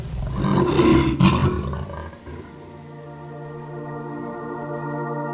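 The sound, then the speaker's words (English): A person voices a loud, raspy tiger roar imitation lasting about two seconds, rough and growling, then it fades into a steady, low humming tone that continues to the end. “Can you growl like a giant tiger? Roar!”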